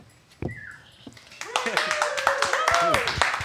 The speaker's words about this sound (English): Yes. Clap.